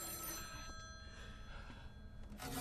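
A payphone on Cherry Street in Columbia rings steadily at night on an empty street, its bell tone sustained, set against a low wash of outdoor background noise with no one speaking.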